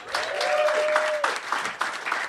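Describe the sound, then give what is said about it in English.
An audience breaks into a steady round of applause, dense clapping that holds at an even volume throughout, with a long sustained whistle rising over it during the first second. “Big round of applause from the slideshow.”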